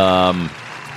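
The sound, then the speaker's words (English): Crowd applause: a steady, hissing patter of many hands clapping, starting under a bright sustained tone that cuts off, then continuing alone at a moderate level. “Crowd appreciates it.”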